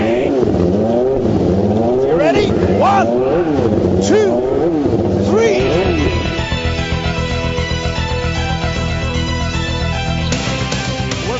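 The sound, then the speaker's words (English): High-pitched IndyCar Series race car engines scream past one after another on a street circuit, including Andretti and Patrick battling at the exit of turn four, their pitch rising and falling as they pass, before settling into a loud, steady, sustained engine drone. “The battle between Andretti and Patrick heats up at the exit of four. This is the IndyCar Series.”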